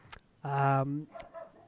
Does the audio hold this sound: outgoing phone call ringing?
no